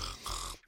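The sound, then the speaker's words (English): A single short, rasping snore, a throaty snort-like breath lasting under a second with no talking around it, from the mustached Red Knight asleep in the infirmary. “Red Knight fell asleep almost immediately, his mustache billowing in the wake of his snores.”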